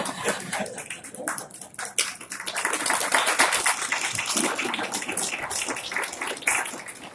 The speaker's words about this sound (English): Is the applause for my understatement?